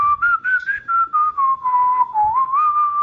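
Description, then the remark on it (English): A lone whistler carries a slow, mournful spaghetti-western-style melody, holding long notes and sliding smoothly between pitches in clear phrases, with no voices and only a faint low rumble underneath; the whistler is the one who did the whistling for Ennio Morricone's music in Sergio Leone's westerns. “Apparently they tracked down the guy who did all the whistling for the Ennio Morricone music for the all of the Sergio Leone westerns.”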